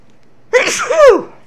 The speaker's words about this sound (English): Now I'm going to sneeze. Pardon me. I imagine that just sounds wonderful on the radio.